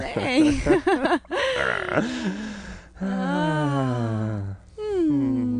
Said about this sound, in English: Does he always yawn like that? That wasn't a yawn. That was a moan.